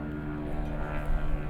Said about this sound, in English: I think, okay, there's obviously you can hear the helicopter. I don't think it's doing circles. Wait. It's doing circles. Just leave, helicopter.